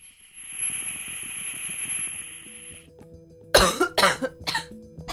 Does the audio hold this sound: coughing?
yes